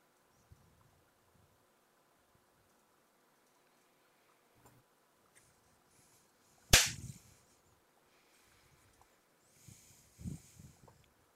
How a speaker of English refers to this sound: Where's the clap? I just clapped. I legit didn't hear you clap. I didn't hear it It spiked on my audio.